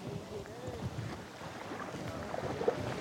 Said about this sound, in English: As if on cue, the sky darkens as the canyon walls narrow, the river quickens, and the water turns white with rapids.